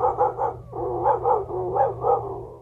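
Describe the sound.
Former quarterback Dan Orlovsky convincingly mimics a dog with his mouth, letting out a quick series of rhythmic barks and yips, fairly loud, with no other talking.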